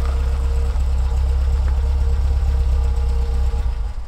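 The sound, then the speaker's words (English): A truck engine idles with a deep, steady rumble and faint knocking, running loud and continuous for several seconds with only a slight wavering near the end, as the truck comes to a halt in a clearing at the edge of the Yukon River. “The truck ground to a halt, and the three of them got out to load their bags onto their backs.”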